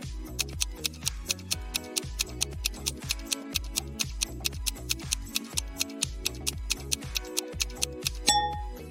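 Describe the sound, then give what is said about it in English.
A countdown timer ticks down to an explosion in five minutes, in a fast, steady rhythm, its sharp clicks ringing out over a low, tense musical drone, with no one speaking. “And in front of the third exit, there's a timer ticking down to an explosion in 5 minutes.”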